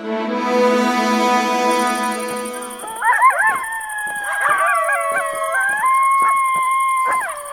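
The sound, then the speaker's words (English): Coyotes howl and yip together, several wavering, rising-and-falling voices overlapping, following a few seconds of steady droning tone; no one speaks. “Jeez, you guys sure do have a coyote problem out here, don't you?”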